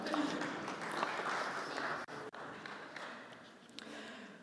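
An audience at a Bible talk claps for themselves in a dense, steady patter of applause that holds for several seconds, broken by a couple of brief dips before tapering slightly toward the end.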